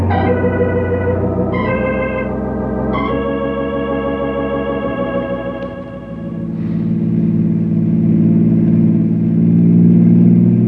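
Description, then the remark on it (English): A car engine drives slowly along a road with sharp turns, the shortcut to Canyon City, its strained, buzzing whine climbing through three quick gear shifts, then settling into a steady, lower rumble that continues to the end. No one speaks. “Hey, you really did slow down, didn't you?”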